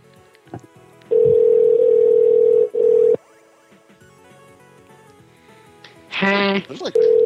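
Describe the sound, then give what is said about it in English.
A loud, steady telephone ringing tone of an outgoing call drones for about two seconds, breaks briefly, then resumes before cutting off; faint voices murmur in the background, and a short buzzy electronic burst follows near the end. “There's like 14 people listening to ringing.”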